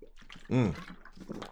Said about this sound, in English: I'm gonna grab a beverage here, excuse me. I'm not cutting that out. I don't care what you guys say. You know, actually my water's over here.